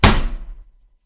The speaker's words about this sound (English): slammed her hand on the table.